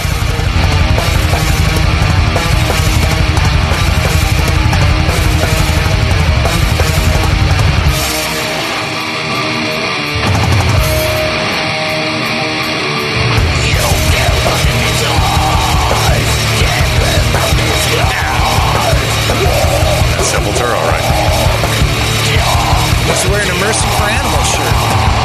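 Loud, dense heavy metal from a live album, with distorted guitars, pounding drums and yelled vocals. It drops briefly to a thinner, quieter passage partway through, then crashes back in at full force.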